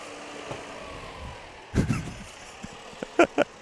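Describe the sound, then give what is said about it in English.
A big tractor engine rumbles low and steady, with a heavy clunk partway through and a few sharp mechanical clacks toward the end; the tractor is used to move an animal. “and here comes a big tractor.”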